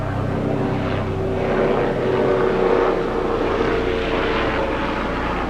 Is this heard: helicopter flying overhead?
yes